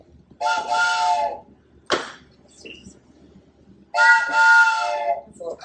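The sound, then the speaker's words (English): A toy train whistle gives two bright, chord-like toots, each lasting about a second, separated by a short pause with a faint click in between. Fairly loud. “I've got a toy train.”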